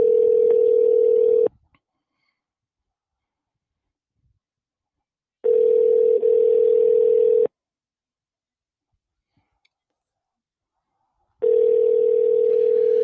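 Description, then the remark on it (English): A telephone ringing tone on the line as a call is placed from the West Coast to an out-of-state number: three steady, buzzy two-second rings separated by long silent gaps, clear, with no voices. “I don't even know if anybody will pick up on this phone.”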